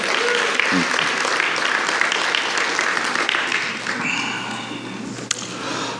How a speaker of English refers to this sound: Can we give her one more round of applause?